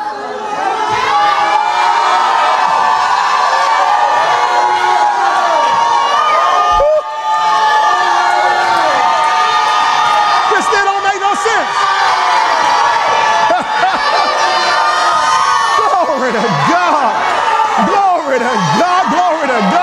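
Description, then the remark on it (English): A large crowd shouts and cheers together at full volume, a dense wall of overlapping voices with whoops rising above it, sustained throughout apart from a momentary dip partway through. “Then all the people shouted with a great shout.”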